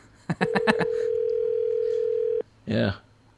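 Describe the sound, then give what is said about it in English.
A steady, single-pitched telephone dial tone hums for about two seconds under a quick burst of voices, then cuts off abruptly before a brief spoken word. “is he calling”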